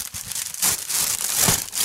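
Crinkling and tearing of wrapping paper, a steady run of crisp rustles with a few louder rips as a present is pulled open. No one speaks.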